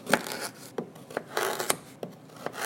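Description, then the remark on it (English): A knife slices through a firm, very long vegetable with a liquid middle in a series of crisp, irregular cuts, each with a short rasping scrape between, fairly quiet and with no one speaking. “I'm going to cut it up now, and listen if you can hear that liquid pour out as I cut it.”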